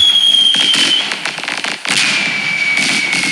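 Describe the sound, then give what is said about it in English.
A fireworks display going off: dense, continuous crackling and popping bursts with a thin, steady high whistle running through, loud, with no voices. “I don't normally either, but I have heard them go off before on New Year's Eve.”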